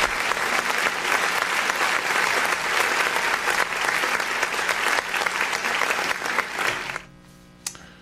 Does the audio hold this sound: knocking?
no